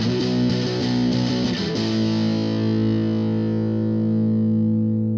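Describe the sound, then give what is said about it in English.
A loud electric guitar, heavily distorted through a distortion pedal, plays a few quick chord strums, then lets one thick, fuzzy chord ring out and slowly fade, with a slight wavering in pitch from wobbling the neck and some whammy bar use. No one speaks. “using a distortion pedal and wobbling the neck a bit to make the sound wobble, along with a bit of whammy bar use.”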